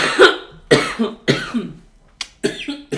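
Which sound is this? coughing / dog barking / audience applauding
coughing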